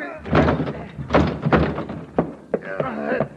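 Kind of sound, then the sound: impact, door being crashed open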